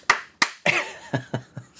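Several sharp hand claps in an uneven rhythm: two quick ones, a brief vocal sound mixed with a clap, then three more claps, with another starting at the end.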